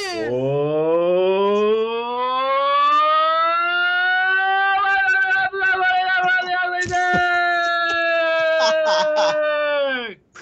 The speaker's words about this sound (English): Well, that sounded like that air raid siren from, like, World War II.